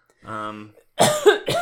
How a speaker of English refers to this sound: Sorry for coughing.